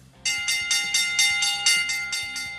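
A bell rings loudly in a rapid, steady series of about ten clanging strikes, each blending into a bright, sustained metallic ring, with no voices. It is the Bell Lap and lunch bell signal on the radio show In the Locker Room with Wolf and Starks on ESPN Pittsburgh.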